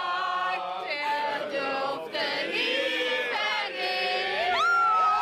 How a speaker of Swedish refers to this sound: Och folk står ju på västsidan och tar emot med kramar, jubel och applåder och allmän glädje och förbrödring.